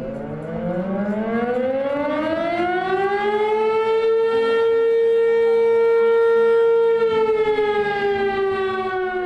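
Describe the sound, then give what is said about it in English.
A loud civil defense siren in a town of 3,000 in the Carson Valley, against the eastern Sierra Nevada, sounding at 6 p.m. on a warm spring evening: it winds up from a low growl to a steady high wail, holds its sustained tone, then begins to fall away, echoing broadly across the valley. “The deafening siren blares across the Carson Valley.”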